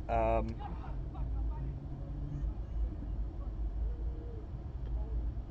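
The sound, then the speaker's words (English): Motorbike engines rumble steadily outside at a gathering like a car meet, where kids look at their engines, a deep continuous drone with a brief higher-pitched rev at the start, moderately loud and constant throughout the few seconds. “Sounds like bikes.”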